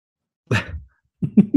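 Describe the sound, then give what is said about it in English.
A single abrupt sneeze bursts out, a sharp airy blast that quickly trails off, followed after a short pause by someone starting to talk. “You don't got another sneeze coming up? I usually end at 3.”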